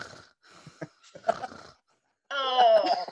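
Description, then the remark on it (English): A voice imitates heavy, labored breathing with a few ragged huffs and gasps, then breaks into a loud, drawn-out wheezing groan. “heavy breathing, probably, because neither one of them was in very good shape.”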